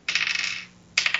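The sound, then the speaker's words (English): Dice clatter and rattle across a hard tabletop in two bright bursts of quick ticking, the first lasting about half a second, then a brief pause before another roll; a die is rolled in a game to decide which character a creature attacks. “Let the die decide.”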